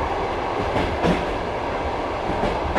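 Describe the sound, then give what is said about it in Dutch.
A passenger train rolls along the rails in Russia, having left Moscow, with a steady, dense rumble, punctuated by a few rhythmic clacks from the wheels passing over track joints. No one speaks. “Deel 1: visum & trein”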